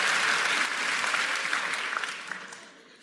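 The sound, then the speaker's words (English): A crowd applauds in a dense, steady wash of clapping that holds strong for a couple of seconds, then gradually thins and softens toward the end, with no voices. “Don't clap yet.”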